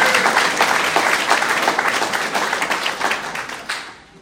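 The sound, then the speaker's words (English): A crowd applauds for God during a sermon, steadily for about four seconds, many hands clapping in a dense, bright patter that gradually thins and fades toward the end. “Let's give a round of applause for God.”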